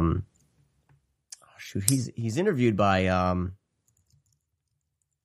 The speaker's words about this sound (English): I hear you typing. Yeah, we're gonna see if I can find it here.